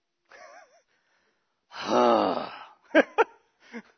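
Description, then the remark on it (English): A person lets out one strong, heavy breath, loud with a slightly voiced, groaning edge, followed by a few short, sharp breathy puffs, demonstrating the strong breathing meant by the Hebrew word nachem. No words are spoken. “So whereas nachem has a sense of breathing strongly.”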